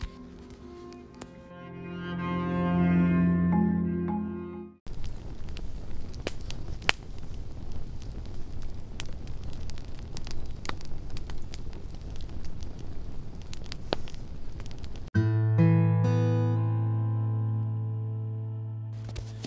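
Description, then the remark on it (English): A campfire crackles steadily for about ten seconds, a dense rustling hiss dotted with sharp pops and snaps, bracketed by tonal music before and after. “Around this campfire, thank you for joining me in the camp of the beyond.”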